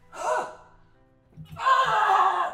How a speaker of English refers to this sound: On the other side, grunts, screams, running feet.